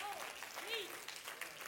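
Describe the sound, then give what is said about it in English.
A thin, scattered patter of hand claps from a crowd, faint and unenthusiastic, with a few brief tonal whistles or voice fragments rising over it. “I'm still getting that little denominational, the reason people leave church, hand clap.”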